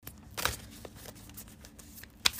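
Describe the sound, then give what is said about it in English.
A deck of cards being shuffled, with quick papery riffles and soft flicks, including a couple of sharper bursts. The sound is fairly quiet, and no one speaks. “Okay, I'm just shuffling the cards real quick.”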